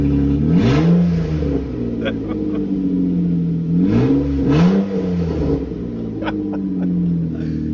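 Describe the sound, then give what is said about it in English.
A loud, raspy car engine without a catalytic converter idles with a deep rumble, then revs up sharply twice in quick succession, each rev rising and falling with a throaty, unmuffled roar. “let you guys hear what my car sounds like without a catalytic converter in it”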